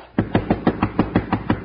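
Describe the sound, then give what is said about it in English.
A locked door of room two is rattled hard and fast, about ten quick, evenly spaced clattering jolts in a steady rhythm, fairly loud, with no voices. “Try the door, Jingles. It's locked.”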